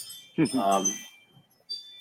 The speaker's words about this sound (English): Those were the chimes. Those were the chimes taking you back in time as you speak about it.